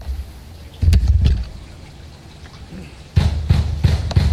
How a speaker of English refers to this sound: this is what the first sounds that Roger Stone woke up to this morning was: the FBI pounding on his door and shouting this.